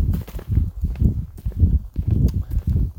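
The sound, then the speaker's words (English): Heavy footsteps stomp steadily through woodland on a cool, dry day with blue skies and clouds, during a walk with dogs: a regular tread of dull thuds with a faint crunch of ground litter under each step, and no talking. “But we stomp on through the woods.”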